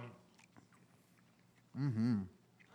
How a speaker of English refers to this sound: When I get done being happy, I'll let you know. I'm still chewing it. It's amazing.